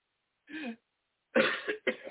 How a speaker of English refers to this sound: Yeah, I'm still coughing shit up.